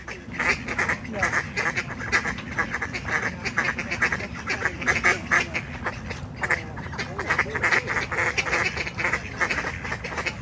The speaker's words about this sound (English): Now remember, this is two ducks on the bank and two ducks in the water quacking at each other the entire time. Now this went on and on and on and on and on, and I was convinced it was heat stress,